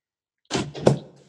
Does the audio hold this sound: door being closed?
yes